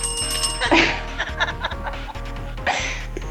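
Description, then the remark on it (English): A steady bell ringing hums on throughout, partly masked by several bursts of laughter and chuckling from people. “Where's the bell? I keep hearing the bell.”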